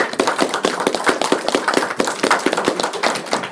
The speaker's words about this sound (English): So thank you very much, and I'll ask for a round of applause.